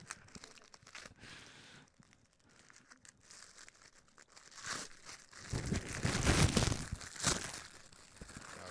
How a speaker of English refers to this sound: It's just wrapping paper in there.